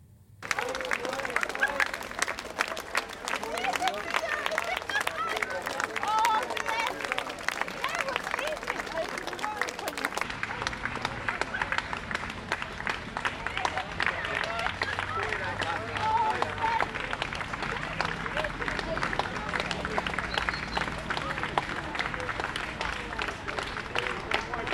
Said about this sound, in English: So there's like a collection of, say, RAF. There was a collection of police, Met Police. And the crowd just burst into spontaneous applause.